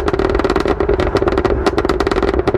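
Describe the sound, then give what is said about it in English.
Loud car exhaust burble with rapid, irregular crackles and pops as the driver lifts off the throttle, over a steady low engine drone, continuous for the whole stretch with no voices. “It has the longest, loudest, most obnoxious burble tune I have ever encountered on anything.”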